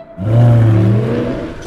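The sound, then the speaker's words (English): A car engine revs up loudly at Nino's restaurant, its pitch rising and holding in a strong harmonic whine before easing slightly, as though pulling away. Short and continuous with no voices. “That's a beautiful car, sir.”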